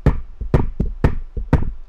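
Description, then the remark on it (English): Five heavy knocking thuds answer a command to count to five and shake a room. The low thuds land about every half second, with softer knocks slipped between them, in a loud, booming, steady pattern with no voices. “And the room shook with the sound of five heavy thuds.”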